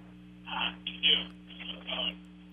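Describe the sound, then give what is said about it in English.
Muffled, narrow-band voice sound from a caller's radio or phone playing in the background of a call to a phone-line show, in a few short bursts over a steady low electrical hum. “Hi, lower your radio or lower your phone, whatever.”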